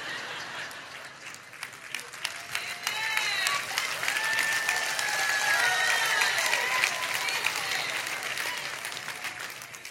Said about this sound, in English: Only the ladies clapped.